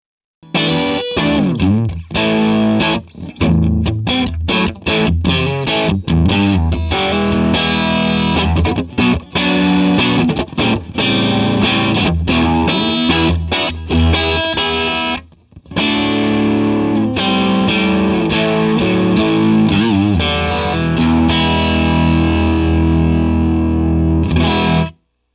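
Overdriven electric guitar played through a 'bandit' distortion pedal on the middle pickup position, in a classic tone, plays loud, gritty blues-rock phrases and chords, continuous with a brief pause midway, ringing out at the end; no one speaks.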